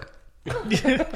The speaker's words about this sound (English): You might hear some more burping. There you go.